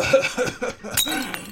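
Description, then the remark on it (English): A wine glass tips over, spilling wine on the floor, with a short clinking clatter, a bright knock about a second in, followed by faint ringing and splashing sounds, with no talking. “I spilled my wine all over the floor and me.”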